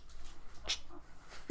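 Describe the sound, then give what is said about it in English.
A female dog gnaws on a baby Groot toy, making soft, uneven chewing and mouthing noises, with one sharper click partway through and a short squeak near the end. It is fairly quiet and no one speaks. “Yeah, as you can hear my dog just going to town over here.”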